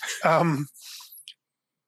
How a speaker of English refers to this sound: So I'm going to take a sip of my emotional support tea.